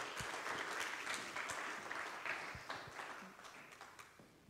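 An audience applauds steadily to welcome a Teen Challenge graduate in its Phase 4 program, a dense patter of many hands clapping at once, holding strong before gradually thinning and fading toward the end.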